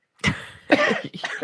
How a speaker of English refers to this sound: I muted myself, yeah. So you couldn't hear me coughing.